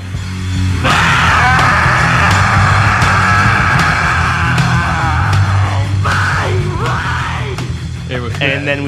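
A strained, high-pitched screamed vocal wails over loud, distorted music, sustaining long shrieking notes before breaking into shorter cries near the end.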